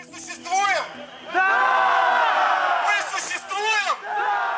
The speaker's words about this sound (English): And he leads them in this chant, you know, we have our voice and we exist. Yes, the crowd shouts back, right? We exist. And it continues from there.